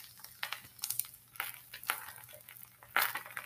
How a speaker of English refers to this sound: That's a fire. Or a camel eating.